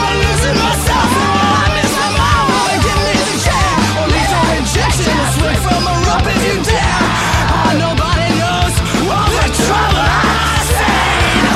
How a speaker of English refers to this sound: There's some really cool background vocals that are go back and forth between notes and screaming. And I think they sound really good.